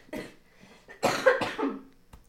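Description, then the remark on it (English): A short, weak cough is followed by a cluster of three louder, raspy coughs in quick succession, with no talking. “You're going to have a strong chant and then just turn into sad coughing.”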